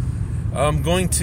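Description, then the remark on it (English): A steady, low road rumble from inside a car moving in traffic, with someone starting to speak over the constant drone partway through. “I'm headed home here in traffic”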